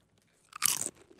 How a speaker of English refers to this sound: Will you showcase the crunch on those? Oh, they're very just crunchy. Give me a little chip. Give me one crunch.